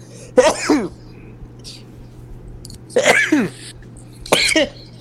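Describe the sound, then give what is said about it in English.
Three sharp sneezes, the first standing alone and the last two coming closer together, each a loud burst with a quick falling vocal edge over a steady low hum. “Bless you.”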